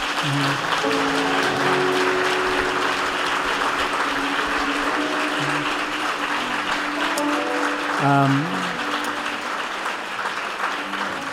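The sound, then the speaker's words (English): A crowd applauds steadily for about ten seconds for standing representatives of partner organizations, a dense wash of clapping with a few faint voices and a brief whoop rising near the end. “All right, first I want to give him a round of applause.”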